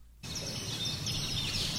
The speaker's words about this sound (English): this week we have Alan's namesake as our featured feathered friend. Right, the Alan's hummingbird.